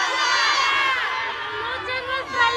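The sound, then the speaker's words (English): Hundreds of women at a march in Mexico shout and cheer together in support of the mother and sisters of a murdered girl, a loud, sustained wall of raised voices that swells again near the end. “Around them, women embraced, raised their fists, and erupted in shouts of support.”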